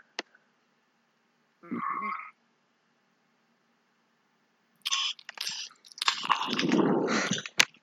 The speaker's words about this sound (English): Can you give me some more, munching ASMR?